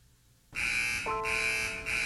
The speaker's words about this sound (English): If you can hear car wash alarm signals coming from Spark Street, you could be entitled to compensation from the city of Burbank or from Gary Janthony himself.